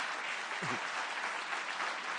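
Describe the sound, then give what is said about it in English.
Steady applause from an audience welcoming a speaker up fills the whole stretch, a dense, even crackle of many hands clapping at once, with a brief low murmur of a voice underneath near the start. “I wanted to ask you to just welcome him up here with a round of applause.”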